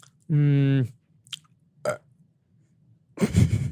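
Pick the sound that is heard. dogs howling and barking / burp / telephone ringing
burp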